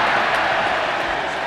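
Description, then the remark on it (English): A large cricket crowd cheers in a dense, steady roar that stays loud and unbroken for the whole moment, with no single voice or clap standing out, after Hughes takes a catch at the boundary off Australian bowler Lily, and the Australian players come in to congratulate him. “The crowd give him a cheer, and all the Australian players come in to congratulate Lily.”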